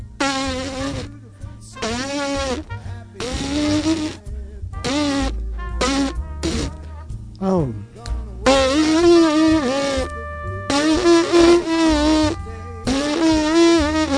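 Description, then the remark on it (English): Lips buzz without a trumpet to practise the trumpet embouchure, a nasal, reedy drone climbing up a scale and dipping through short pitched phrases with brief pauses between them, fairly loud throughout. “You know, on trumpet, to build the embouchure, one part of that is buzzing.”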